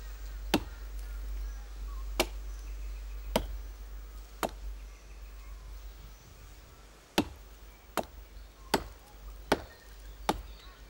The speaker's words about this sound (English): patiently, taking turns with the axe, the women make cuts in the trunk until they find the honeycomb.